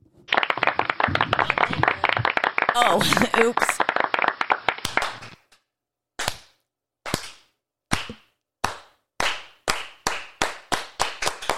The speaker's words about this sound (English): Let's give her a good old-fashioned clap.